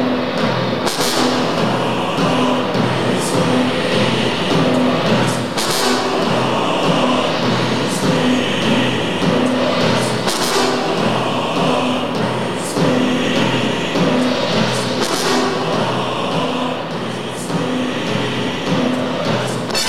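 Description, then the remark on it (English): Loud, dense orchestral storm music from a film score's storm sequence, with sustained brass chords swelling over a thick rumbling texture, punctuated by bright crashing hits every second or two. There are no voices. “So that's from the storm sequence mm-hmm. when he's arriving. Dude, that brass is just like, you know, I like brass, you know, I like jazz.”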